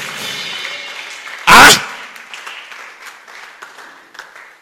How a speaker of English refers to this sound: The way you are clapping, I think I have to stop the service.